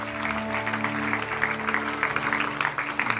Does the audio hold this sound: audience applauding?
yes